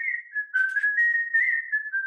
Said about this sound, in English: I've been whistling ever since I was a kid.